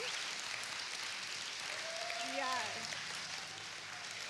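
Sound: audience applause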